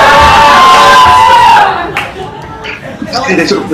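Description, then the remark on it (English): A large crowd roars and cheers loudly with whoops and a shrill whistle after someone answers that a goose is a dinosaur, then the uproar drops off after about two seconds into scattered, quieter shouts and clapping. “A goose is a dinosaur. And the crowd went wild.”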